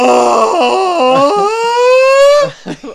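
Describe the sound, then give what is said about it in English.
A man lets out a long, loud, strained yell that climbs in pitch in rough steps and holds high, then breaks off into a few short, ragged vocal bursts. “Because, I don't know, the one thing that really struck me by this is the fact that they use Homer's yell as Godzilla's scream.”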